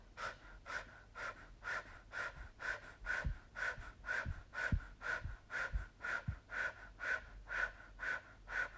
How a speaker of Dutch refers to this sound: We gaan de energie opbouwen door zachte en versterkende ademhaling. Volg mijn ritme.